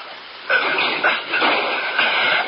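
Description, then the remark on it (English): A garage door rolls open with a loud, steady rattling rumble that starts abruptly and continues for about two seconds, surging slightly in waves. No one speaks. “Yeah, let's get the garage door.”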